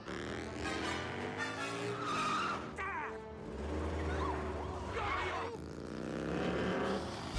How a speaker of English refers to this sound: But I guess at this point, they're like, fuck it, we're in a car chase through a college. There's no point. The adrenaline's up.